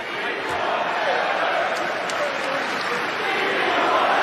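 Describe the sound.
A basketball arena crowd in Philadelphia at a Portland versus Philadelphia game, from an NBC Sports Philadelphia broadcast, chanting "We want Lillard": a dense, steady roar of many voices that stays loud throughout, with a few sharp brief squeaks or taps poking through.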